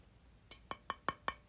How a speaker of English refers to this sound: That's me indicating I was drinking water.